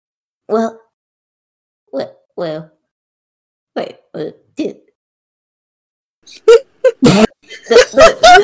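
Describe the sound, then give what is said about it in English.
A voice imitates gasping and a wet cough: a few short, strained gasps spaced apart, then a cluster of harsh, sputtering coughs near the end, fairly loud. “And one of them just kind of gasps out and coughs up a little bit of blood and goes, Why aren't you helping us?”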